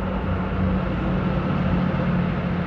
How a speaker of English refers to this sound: The train's coming.